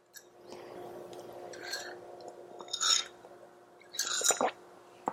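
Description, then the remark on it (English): Wet slurping sips of hot tea, three short bursts with quiet pauses between, over a faint steady hum. “Some good tea. It's very good.”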